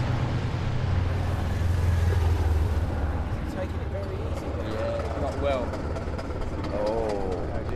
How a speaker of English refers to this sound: That sounds poorly, doesn't it? It's not engine, is it? That's drive shaft. Is it? Oh yeah. Could be engine. Could be. It's... Yeah, it sounds more like the running gear sort of side of it.